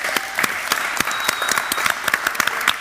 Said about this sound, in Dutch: En mag ik het toch graag een heel hartelijk applaus voor wethouder Vincent Karmans.